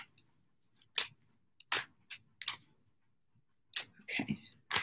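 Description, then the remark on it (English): A deck of tarot cards being shuffled: a handful of short, crisp papery bursts and slaps at irregular intervals, with near-quiet pauses between them and no talking. “Moving forward to Taurus, and I'm using my Gilded Tarot. I'm shuffling away.”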